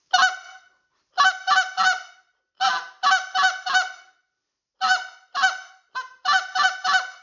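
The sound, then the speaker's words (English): Quick, clipped spit notes blown on a goose call to work geese, fired in tight bursts of three or four sharp honks with brief pauses between groups. Loud, with no talking. “once we kind of showed you hitting that spit note, is that I'm going to watch those geese in here. I'm going to give them a couple quick.”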